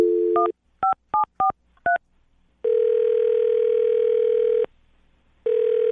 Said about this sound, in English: Well, I'm going to dial her phone number right now, get her on the phone, and find out why she's not calling you back, okay?